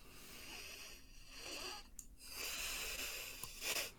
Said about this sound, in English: Oh, yes. The breathing is wonderful. Yes, deafening silence.